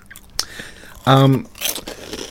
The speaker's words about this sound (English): Okay, so you're having a bit of a munch there. Very crunchy. Very crunchy. Mm-hmm. They're not greasy like a potato chip. You know how sometimes you get that very oily texture? Yeah. It's very dry.